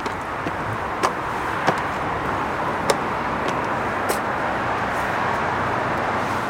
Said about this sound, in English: So this road here, we've got six lanes of traffic, and you can see it's packed heading out of London, but flowing freely into London.